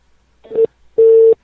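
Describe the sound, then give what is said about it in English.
Telephone line tones from a call being placed: a short electronic beep followed by a longer steady ringing tone, clear and close, with no voices. “Anyway, I've got another number for this guy.”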